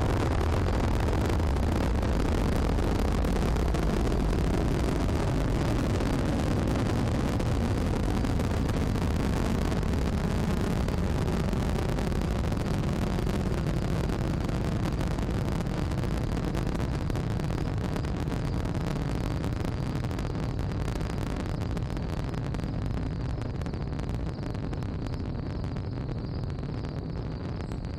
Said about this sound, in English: 5, 4, 3, 2, 1, and now you press the button and the rocket engine rumbles to life and the rocket begins to lift into the air, accelerating faster and faster as it travels into the night sky.